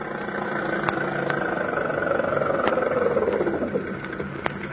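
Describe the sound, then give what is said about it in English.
A car engine runs steadily, a continuous rumbling hum with a slight rise and fall in pitch, broken by a few faint clicks; no one speaks. “Stop that car, huh?”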